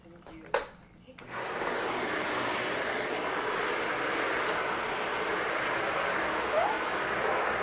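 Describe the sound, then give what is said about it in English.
A couple of clicks, then a vacuum cleaner switches on and runs with a steady, loud roar and a thin high whine while vacuuming a very small space. A brief, faint rising squeak from the vacuum turning on its little pivot, not a dog, cuts through near the end. “And that squeaking you hear is just my, it's not my dog, I promise. It's my vacuum turning on a little pivot thing.”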